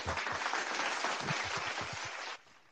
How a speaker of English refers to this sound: Clap it up for us, man.